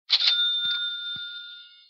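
A bright cash register bell rings with a loud metallic strike and a high, sustained tone that slowly fades, joined by two soft low thumps partway through. No voices.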